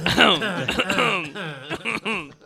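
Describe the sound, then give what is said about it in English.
A person clears their throat several times in close succession, throaty and voiced with groaning pitch slides, loud with no words spoken. “Without clearing your throat, too.”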